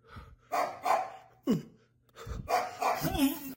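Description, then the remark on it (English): A dog barks in a few short, uneven bursts, including a sharp, higher yelp in the middle, with brief pauses between the outbursts. “This motherfucking ghost came on my dog too.”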